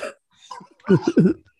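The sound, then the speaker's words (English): A person coughs: a quick rasp at first, then after a brief pause a burst of three harsh, throaty coughs in rapid succession. “Why did they cough like that?”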